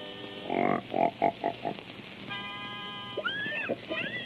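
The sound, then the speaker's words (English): A pig, being brought into pitch to sing, gives a quick run of about five nasal grunting oinks, then a held, steady tone and a couple of sharp rising squeals, fairly loud. “Hey, wait till you hear my singing pig. First, I gotta get him in pitch.”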